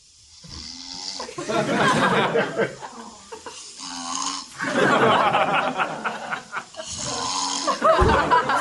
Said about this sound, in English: Well, because if he's lying in a certain position, he snores really loud, but any other position, he's fine. So I was just trying to like move the pillow a little bit. But this is him snoring.